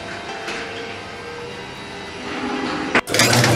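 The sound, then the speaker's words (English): A garage door grinds and rumbles steadily as it opens, its motor droning with a mechanical whine, then a louder clunk and rattle near the end as it jolts. “All right, guys, go ahead. Open your garages.”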